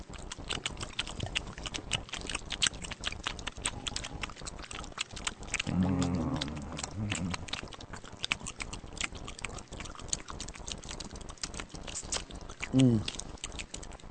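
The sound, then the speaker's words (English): Loud chewing of food, with wet crunching and smacking that goes on steadily for the whole stretch. A short murmured vocal sound breaks in partway through and again near the end. “You gotta stay and take the chewing.”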